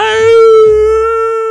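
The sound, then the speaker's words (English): A person imitates a dog's howl, the way they howl along to songs at karaoke, holding one long, loud, steady tonal note with rich harmonics for about a second and a half. “When there is a song, I howl. I go, aah!”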